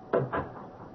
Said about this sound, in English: Close your room door while I close mine,